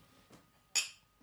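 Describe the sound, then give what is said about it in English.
Wine glasses touch together in a toast, a single bright clink that rings briefly with a high, shimmering tone, after a faint soft tap in an otherwise quiet moment. “Well, on that note, now that we're tweaked, cheers.”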